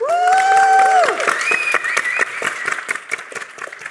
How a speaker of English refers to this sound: So audience, you've been phenomenal. Give yourselves a cheer.